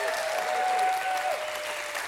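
An audience applauds with steady, dense hand clapping that fills the whole clip at a fairly loud, even level, with a faint sustained tone running underneath.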